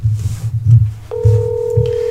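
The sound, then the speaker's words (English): A steady electronic telephone dialing tone, as a call is placed to get someone on the phone, switches on about halfway through and holds, sounding clear over a low, pulsing background beat. No one speaks. “Let's call Mike up and get him on the phone just for a couple minutes here as we finish up.”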